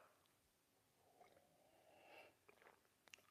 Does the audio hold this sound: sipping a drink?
yes